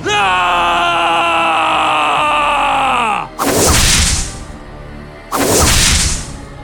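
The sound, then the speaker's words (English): A voice imitates a backhanded whip lash aimed across the face as the whip is retracted: a long, loud, drawn-out tone that bends downward, followed by two sharp, hissing swish sounds spaced about two seconds apart. “And then, like, almost in one motion, as he retracts the whip, he'll just turn around and just do it, like, backhanded and do this, just try to get him, like, right across the face.”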